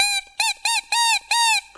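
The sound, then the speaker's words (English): A bagpipe reed crowing as it is sucked to test it: five loud, buzzy, honking squawks in quick succession, high-pitched with a slight wavering bend, separated by short gaps, with no talking. “Now, the way to test a reed is to suck it like this.”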